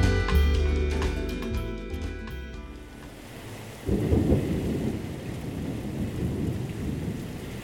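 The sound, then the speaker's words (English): As a few seconds of music fade out, a steady wash of monsoon rain in the Sonoran Desert takes over, and a deep roll of thunder rumbles through midway before the downpour continues on its own. “The annual monsoon is usually cause for celebration in the Sonoran Desert. But the much-needed clouds and rain bring with them lightning, and that increases the threat of wildfires.”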